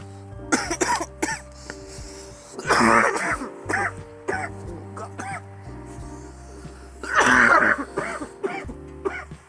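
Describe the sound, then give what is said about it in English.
Harsh coughing comes in bursts: a few quick hacks early on, then two heavier, raspy coughing fits with throat clearing, over a low steady hum. “Everybody's barely getting used to my cough, but my shit's gonna be legendary one day.”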